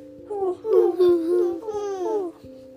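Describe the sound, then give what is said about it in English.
A voice imitates the hoot of the owl in a book being told: a couple of drawn-out, wavering hoots that slide up and down in pitch, fairly loud, over a steady low hum with faint regular ticks. “And that's what he did in the book with the owl, huh?”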